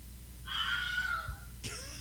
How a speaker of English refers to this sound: Wow. That's it. The famous Wilhelm scream. Sounds like my cat. The very first Star Trooper that Luke Skywalker shoots off this high ledge up there and falls. Oh, they use that the same scream.